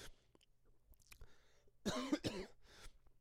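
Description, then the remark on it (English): A short burst of two or three harsh coughs near the middle, preceded by faint throat noises and followed by a softer throat-clearing sound, with no talking. “Sorry, I keep coughing.”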